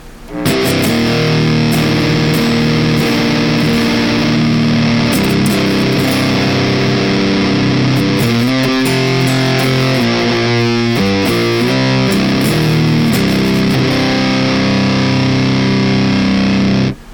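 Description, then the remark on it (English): Heavily distorted electric guitar played through a Drone Gazer amp into Eminence CV and DV speakers with a three-mic blend, five speakers and five microphones in total; thick sustained chords with a dense fuzzy wall of harmonics, steady and loud throughout with a few shifting chord changes and no voices. “So technically five speakers, five microphones, and yeah, this is what the drone gazer sounds like.”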